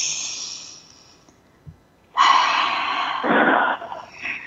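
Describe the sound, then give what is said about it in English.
Slow, deep belly breaths, drawn all the way down into the belly and expanding it: a long airy exhale fading out, a brief pause, then a strong full inhale swelling into another breathy release, with no talking. “let's just take a moment and breathe. And I'm talking about real breath, not just in the lungs, but all the way to the very belly of us, really expanding that belly.”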